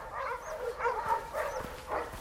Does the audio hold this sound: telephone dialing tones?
no